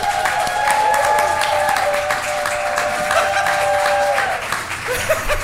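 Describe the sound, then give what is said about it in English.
An audience claps steadily for several seconds as Darren Mulligan, lead singer of a band, is introduced, a dense, even patter of many hands, with a faint sustained tone humming underneath. No one speaks. “Okay, maybe he didn't want the clapping.”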